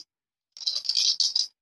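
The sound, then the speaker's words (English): A bright clatter of dice being shaken for about a second, a quick run of hard clicks with a couple of brief pauses. No one speaks. “What color dice tonight, guys?”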